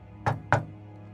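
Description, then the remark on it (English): Two distinct knocks given in answer to a question, evenly spaced about a quarter second apart, sharp, with a low hum underneath and no voices. “Was that two or three knocks?”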